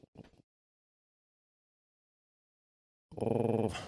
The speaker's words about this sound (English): Sorry, I'm not playing a dog creature yet. That's just the sound of the puppy in the hallway.